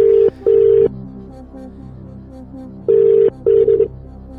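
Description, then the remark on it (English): Ringback tone of an outgoing phone call: two double rings, each a pair of short steady beeps, separated by a pause. Clear and fairly loud, with no voices. “Hello, you didn't answer your phone there. Twice.”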